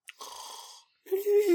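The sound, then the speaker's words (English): A voice imitates a pony snoring, whinnying as it breathes out: a breathy inhaled rasp, a short pause, then a buzzing, whinnying exhale with a wavering pitch, fairly loud. “then she finds out that it's Rainbow Dash who snores”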